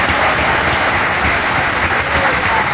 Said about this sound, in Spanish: Denle un aplauso a Cristo en esta noche.